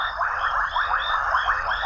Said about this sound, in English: We leave you this week deep within South Africa's Madikwe Game Reserve. During the day, elephants, giraffes, lions, and warthogs come to drink at the Inkwe Pan waterhole, but at night it comes alive with a chorus of male casino frogs and crickets.